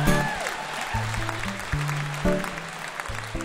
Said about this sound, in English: I'm not really sure how to take that. You're either applauding that you're right, I should go first, or you agree with me, but